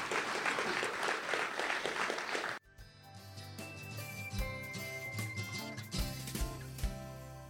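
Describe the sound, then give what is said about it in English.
A burst of dense, crackling audience applause for a couple of seconds, cut off abruptly and replaced by a bright musical jingle with steady beats and chiming tones. “A round of applause for the two gentlemen.”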